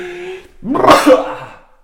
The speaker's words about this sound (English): And I feel a sneeze coming on. I'm just...